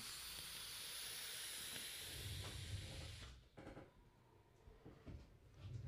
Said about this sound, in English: Sometimes I just need to take a vape break. Cheers.